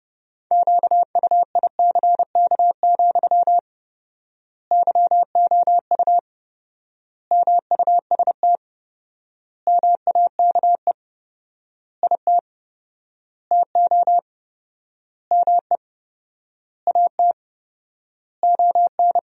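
Morse code practice sending sentences from the top 500 words at about 30 words per minute with 4x word spacing: a steady mid-pitched tone keyed in rapid dots and dashes, grouped into short bursts separated by long, even pauses, with no voices.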